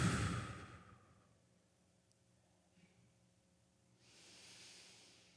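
Slow, audible breathing kept at a steady pace during a guided prayer: a long airy exhale fades out, a few seconds of near silence follow, then a soft hissing inhale rises as the next breath begins.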